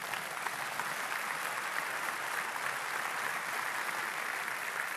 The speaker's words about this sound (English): You can clap. Go ahead.